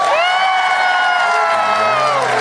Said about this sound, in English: Oh, wait. We actually got boos on that man.